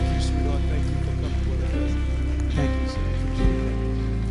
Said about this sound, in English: Give him a hand clap as they go. Thank you, sir. Come on, give him a hand clap as they go.